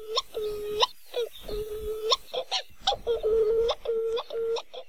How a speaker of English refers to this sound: Like many Hawaiian birds, Wa'u are named after the sound they make. Their haunting calls can be heard at night as they fly mauka to their nests high in the mountains.